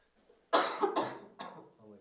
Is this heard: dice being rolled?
no